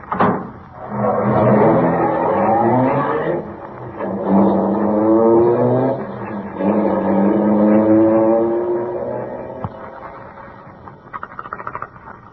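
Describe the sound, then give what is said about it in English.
A passing car's engine revs up and pulls away, its pitch climbing through several gear changes before the sound fades out, followed by a few faint clicks. “Sure. Hop in.”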